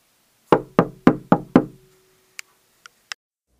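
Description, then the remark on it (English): Five firm, evenly spaced knocks on a wooden apartment door, loud with a hollow resonance, followed by a few faint light ticks; no one speaks. “Just as I was starting to doze off, I heard a knock at my door.”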